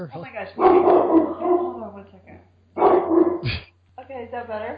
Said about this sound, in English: I don't want to shush my dog up either. Maybe your dog can bark it out.